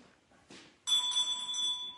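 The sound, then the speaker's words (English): A hand bell rings once, loud, its bright tone hanging on without fading. A brief soft rustle comes just before it, and no one speaks. “if it gets too much that she'll ring the bell.”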